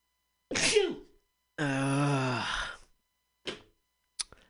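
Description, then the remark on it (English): A sharp sneeze bursts out, followed by a long drawn-out voiced groan and then two brief, quieter breathy snaps, with no words spoken. “If only it were as easy to get rid of a corrupt officer as it was to sneeze.”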